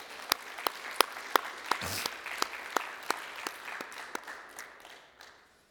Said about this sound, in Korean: 여러분 이렇게 수고하신 우리 주님의 일꾼들을 위해서 한번 박수를 좀 드렸으면 좋겠습니다.